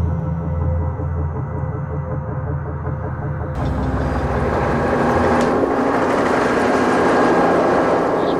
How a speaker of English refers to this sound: State police helicopter drops it.